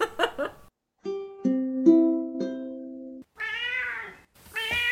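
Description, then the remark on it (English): A female cat meows twice near the end, fairly loud, with wavering drawn-out calls. Before them come a brief burst of sound and a stretch of steady electronic tones. “I didn't say she was like other cats.”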